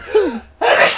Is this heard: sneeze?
yes